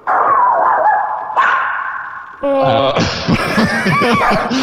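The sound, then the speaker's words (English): A dog barks and yips excitedly up close, loud and nearly continuous, the calls growing higher and more frantic partway through, with no one talking. “the children of the night are freaking out, it sounds like. Yes, this is my wolf, Bruno.”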